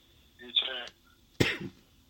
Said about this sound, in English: Sorry, guys. A bit of a cough there.